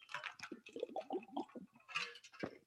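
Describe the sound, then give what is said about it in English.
Someone drinks water, with a quick run of small sips and wet swallowing sounds, then a couple of louder gulps near the end, quiet overall and with no talking. “Some water.”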